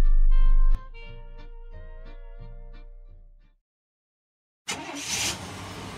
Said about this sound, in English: There goes Pam Youngke across Wisconsin in her suburban truck.